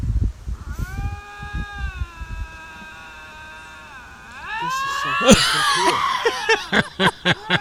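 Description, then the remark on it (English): Two lynx scream at each other face to face, about 2 inches apart: a long, wavering tonal wail, then louder, harsher overlapping yowls in choppy bursts. A person speaks briefly at the start. “What are these Lynx yelling about?”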